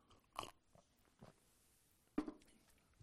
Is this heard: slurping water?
yes